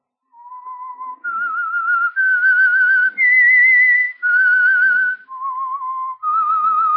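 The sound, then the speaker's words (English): The whistled theme tune of The Whistler, played alone: about seven loud, sustained notes with a wavering vibrato, climbing step by step to a high peak, then falling back down before rising slightly at the end. “I am the Whistler, and I know many things, for I walk by night.”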